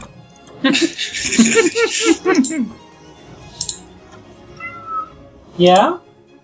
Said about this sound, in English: Max is here. Hi, Cat.